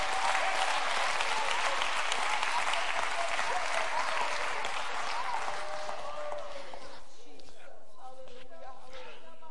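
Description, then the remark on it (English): A large crowd claps hands to praise God in a dense, sustained burst of applause that gradually thins and fades over several seconds, with a few voices calling out faintly near the end. “Come on, clap your hands and praise him right now.”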